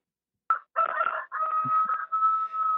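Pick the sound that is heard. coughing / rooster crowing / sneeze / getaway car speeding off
rooster crowing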